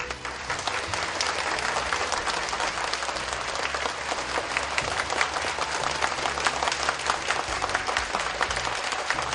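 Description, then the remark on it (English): Sustained audience applause thanking His Excellency and the distinguished guests at an event in Taiwan, many hands clapping in a dense, steady wash of sound that stays loud for the whole stretch, with no voices standing out. “Let us please give a big round of applause to thank His Excellency and all the distinguished guests.”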